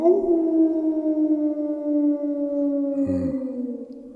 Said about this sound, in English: You hear them, Mr. Harker? The wolves? The children of the night. As you say, Mr. Harker, the wolves listen.